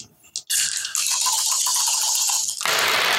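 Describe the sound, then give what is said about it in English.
Dice rattling and clattering continuously as damage is rolled for a lightning bolt against zombies, a loud bright jangle of many small hard pieces tumbling against each other for a few seconds, with a brief pause near the start and no speech. “So roll damage to see.”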